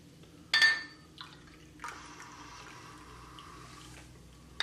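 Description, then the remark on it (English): A short glassy clink, then stout beer pours steadily into a glass for a few seconds, fairly quiet, ending with a faint tap; no one speaks. “Here's a little more for you.”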